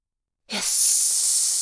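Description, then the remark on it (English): A sudden, forceful hiss of gas blowing out with hurricane force up through the tops of spires, bursting in after a moment of silence and holding steady and loud as a bright, airy rush until the end. “Hiss! Gas! The gas blew with hurricane force up through the tops of the spires.”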